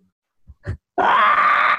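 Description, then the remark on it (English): A couple of short, low grunts, then a loud, raspy guttural scream that holds steady for nearly a second before cutting off. No talking. “No, it's just like you with that guttural scream.”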